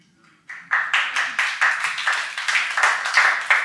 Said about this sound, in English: That was, everybody's like, that's not good enough to clap for.